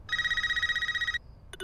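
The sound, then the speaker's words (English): A cordless phone rings in the trailer for the film Scream (2022): an electronic ring trills rapidly for about a second, a bright warbling tone with fast pulsing, then cuts off, followed by a couple of brief clicks and beeps. “The fact that there's still a cordless phone”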